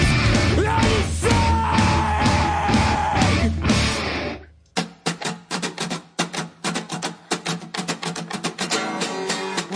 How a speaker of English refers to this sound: This guitar, and he screams.